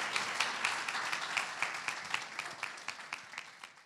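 An audience claps and snaps their fingers to welcome a speaker to the pulpit, in a dense, steady patter of applause, with sharper individual claps standing out in a quick, even rhythm that gradually softens toward the end.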